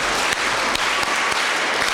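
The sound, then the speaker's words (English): A group claps together at a school band event honoring the seventh grade band, in a dense, steady burst of applause, with a few sharper unified claps standing out at roughly regular intervals. No one speaks. “You ready to do the clap?”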